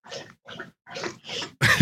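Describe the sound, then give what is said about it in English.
A female dog laps and snuffles at a dog bowl in four short, wet, slurping bursts with brief pauses between, ending in a louder, sharper burst. “So, which one of you is licking the bowl? Which one of you is doing the dog bowl right now?”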